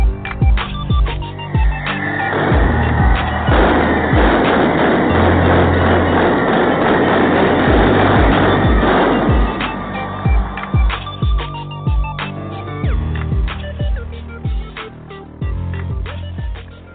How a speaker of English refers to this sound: Tell everyone the fireworks that you just heard will start off here in my living room, but I can't.